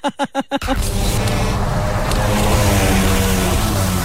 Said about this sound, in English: If there's one thing Dad loved more than Serenity, it was a two-stroke engine on full throttle.